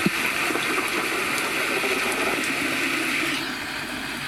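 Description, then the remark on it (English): Steady, hissing rainfall at the opening of a song pours continuously with a dense, even patter, holding a constant level before easing slightly near the end. No voices are heard. “It's just rain.”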